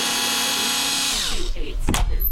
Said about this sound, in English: A woman who appears roughly the same age as the bodies on the bed pushes into the room past a canister-shaped robot retracting a drill arm from the bored-out remains of the door lock.